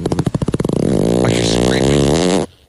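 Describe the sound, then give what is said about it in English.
A fart sound effect opens as a rapid train of rubbery pops that speed up into a steady, buzzing raspberry with a wavering pitch, zipper-like in texture, before cutting off abruptly. “rubbing your thumb on a balloon. I hear a zipper.”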